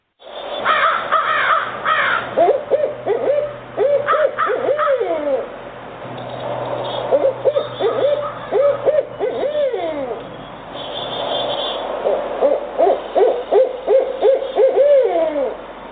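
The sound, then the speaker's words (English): Barred owls hooting in a lively exchange, with repeated rising and falling calls and cackling, caterwauling bursts that come in waves over about sixteen seconds, loud, with no talking. “Actually, it's called barred owl.”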